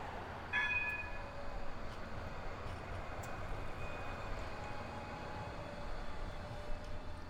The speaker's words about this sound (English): To get to my next stop, I'm going to hop on the tram from the Art Gallery tram stop and head west down North Terrace to the City West tram stop, all within the free tram zone.